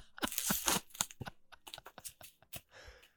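Crinkly packaging wrapped around two ceramic boot-shaped shot glasses is pulled and torn open by hand, a dense burst of crackling and ripping followed by shorter, irregular rustles and snaps with no one talking.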